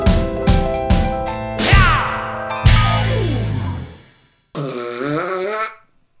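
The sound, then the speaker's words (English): A mouth-made fart noise, loud, with several buzzy, sputtering bursts over a few seconds, then a brief pause and one final wobbling raspberry. “That was a good fake fart.”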